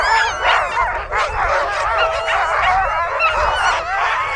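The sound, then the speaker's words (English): Fourteen sled dog teams on a frozen lake bark, yip and jump frantically before a mass-start race, jerking their sled lines as the anchored sleds strain, in an overlapping, nonstop chorus, some voices louder, others softer, with excited whines mixed in and no talking. “Sled lines jerk and tighten as the dog teams bark and jump.”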